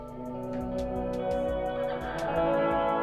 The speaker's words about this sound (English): What's the new toy you've brought with you? This is new to me. It's a Death by Audio Rooms reverb pedal.